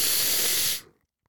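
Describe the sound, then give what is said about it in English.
Someone blows their nose in one steady, hissing blast of air lasting under a second, which cuts off sharply into silence. No one speaks. “I need to blow my nose now.”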